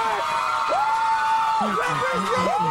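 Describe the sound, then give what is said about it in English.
A dense crowd roars and cheers, with a long, high whoop rising above the noise and shorter yells breaking in near the end. The din is loud and continuous throughout. “The crowd loves it.”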